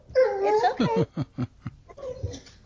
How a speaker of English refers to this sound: My dogs have these streets, so they like to bark at every dog walking by.